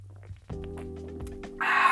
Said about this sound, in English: So, hold on, let me get a little sip of my coffee here.